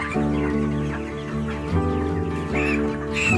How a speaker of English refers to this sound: gonna translate what the chicken is trying to say.